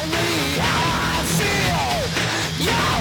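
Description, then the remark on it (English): A high-pitched scream in a song wails over a dense, loud wall of harsh distorted guitar, its sliding cries rising and falling across about three seconds while a steady beat continues underneath. “Yeah, those high notes. That scream right there.”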